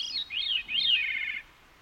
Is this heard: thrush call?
yes